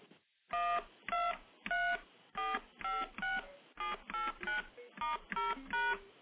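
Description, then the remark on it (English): A sequence of about a dozen standard DTMF telephone touch-tone beeps, played as a demonstration, each a short steady dual-pitched tone, at a brisk even rhythm with brief gaps between them and no talking. “Now, just for comparison, let me play what all the standard touch tones sound like.”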